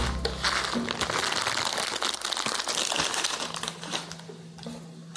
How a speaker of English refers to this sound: It's time to open that package of ramen.